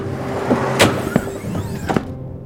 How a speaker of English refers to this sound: Careful. That's an expensive chair you just hurled into the wall.